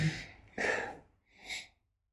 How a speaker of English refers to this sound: So. Let's have a sniff of this.